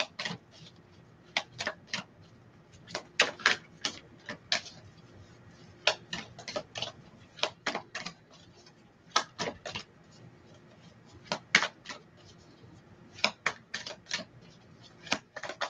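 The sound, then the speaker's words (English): A deck of cards that is sticking together from not being used in a while is shuffled, with irregular clusters of crisp, quick clicks and soft slaps repeating throughout, and no voices. “These are sticking together because I haven't used them in a while. I'm like, okay, y'all, come on. Shuffle for mama.”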